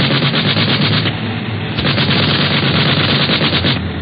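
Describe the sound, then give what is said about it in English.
Rapid, sustained machine-gun fire from a plane nosing down in flight at another plane ahead, aimed at its right wing or pilot. A loud continuous rattle of closely spaced shots sounds over a dense roar, with only a brief dip in the middle and no talking. “Are you aiming for their gas tanks, Barney? No, the right wing. Or the pilot, if I can get my sights on him.”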